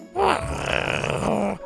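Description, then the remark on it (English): A short, raspy growl lasting over a second, loud, with a gravelly rumbling texture and a rising start; it sounds like a human voice imitating a small dinosaur growling. “Scoot rolled over and growled back at him.”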